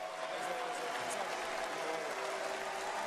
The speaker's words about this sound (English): This is the booing after Daniil Medvedev. The energy you're giving me right now, guys, I think it will be enough for my five next matches.